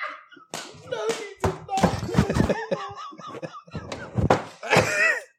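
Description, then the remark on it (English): A microphone is slammed down onto a hard surface, producing a cluster of loud thumps and rattling knocks, with excited voices and laughter carrying on around the impacts. “I just slammed my microphone down like I was … in the fucking late 90s.”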